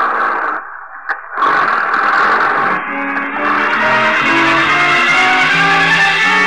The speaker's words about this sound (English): Then you swing the truck around the loading platform where you agreed to meet the baron.